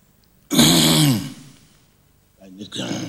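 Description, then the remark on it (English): A loud throat clearing with a raspy, voiced cough lasting about half a second, followed after a pause by a shorter, quieter rasping cough. “You need God to cough.”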